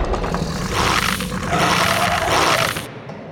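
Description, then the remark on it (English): A dog outside a door growls in a low, rough, rumbling snarl that holds steady for nearly three seconds, then cuts off abruptly into quiet. “There's a dog outside my door.”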